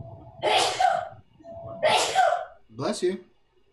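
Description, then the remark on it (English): Two loud sneezes in quick succession, each preceded by a brief sharp intake, followed by a shorter, softer third sneeze or snort. “Bless you. Bless you.”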